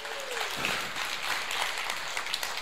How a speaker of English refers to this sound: Give the Lord a great hand clap for praise. Hallelujah.